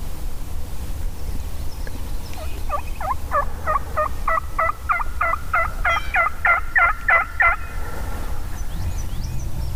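A wild turkey gobbles far away during a turkey hunt, a rapid rattling burst lasting several seconds, set against a steady, loud low rumble of road traffic.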